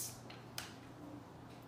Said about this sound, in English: How about that super dramatic fizz when I opened the sparkling water bottle?